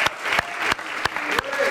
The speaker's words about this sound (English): Come on, clap your hands unto Him today.